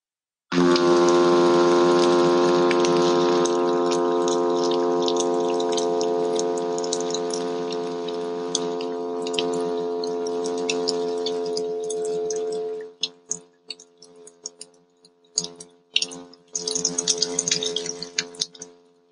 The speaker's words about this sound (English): So here's the sound of the hum of the midshipman fish. And this is the one I'll mostly be talking about.